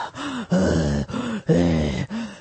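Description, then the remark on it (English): A person imitates a prank caller's heavy, creepy breathing on the phone: four or five raspy breaths in a steady rhythm, each with a groaning, voiced edge, and no words spoken. “When she answered, the person on the other line only hung up or made weird noises. Probably those what, eye-turning noises. Breathing?”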